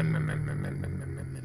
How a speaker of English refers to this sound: Like the asshole that's revving his engine right now.